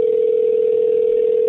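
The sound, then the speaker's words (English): A steady, unbroken telephone line tone from a recorded phone call hums at an even pitch and loudness, with the thin, band-limited sound of a phone connection and no voices. “Made a phone call yesterday and in regular Damn It Maury fashion, recorded the entire thing.”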